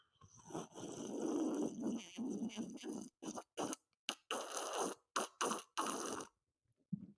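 A loud, wet slurping sip drawn in through the lips, starting as a long continuous pull and breaking into short choppy gulps and hisses with brief silences between, no talking.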